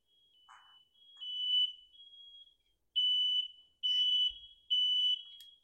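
A piercing smoke detector alarm sounds in a steady tone, then in three loud, evenly spaced bursts separated by brief pauses, with no talking.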